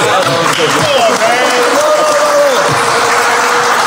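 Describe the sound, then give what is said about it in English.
Loud, steady clapping in reaction to a joking claim that someone robbed him fills the whole stretch as a dense, continuous patter, with voices and some laughter-like calls rising over it. “Hey, you clapped because you said he robbed him?”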